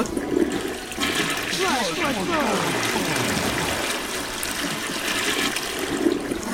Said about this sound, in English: I think the only way that we can get to Jasmine, because she's in Chicago, is to flush ourselves there with Flushy, the Twim toilet. Here we go.